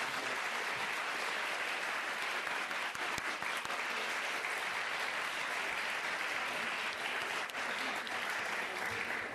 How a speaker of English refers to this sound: Thank you to all of you for your questions, but if you can join me in giving our wonderful panellists a round of applause. Thank you.